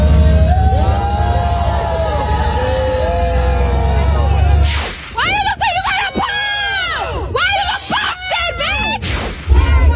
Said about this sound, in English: Oh, so listen when Amber Heard comes out of the trial. Listen to our fucking crowd. Boy, oh boy, talk about no fans.